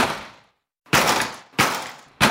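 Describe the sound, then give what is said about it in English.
A storm door is kicked hard three times in quick succession in a test of whether it can be broken, each loud, booming thud followed by a brief rattling decay, after the fading tail of an earlier blow and a short silence. “And when that didn't work, we tried kicking it.”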